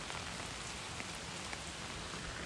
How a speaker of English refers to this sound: In any event, I was also a little crazy in that yesterday it was raining like this. You could probably hear it.